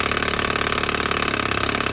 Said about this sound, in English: Dirt bike? No, it's definitely not a dirt bike. That's some kind of tractor engine. Some sort of like poppy two-stroke diesel or something?